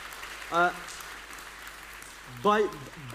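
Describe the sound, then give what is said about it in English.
Light, scattered audience clapping forms a soft steady wash throughout, with two short voiced calls or whoops rising above it, welcoming a group of girls and guys, ex-drug addicts and convicts, as they come onto the platform. “By your nice little clap, maybe let me explain to you.”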